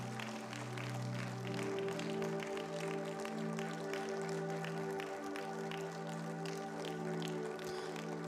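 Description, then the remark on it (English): An audience applauding steadily for several seconds for people coming to the altar, a dense patter of many hands clapping over sustained, droning keyboard chords, with no speech. “Clap for them. Clap for them. Clap for them.”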